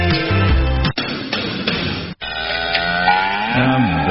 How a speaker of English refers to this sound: Wow, that was a big cow, but a diseased one.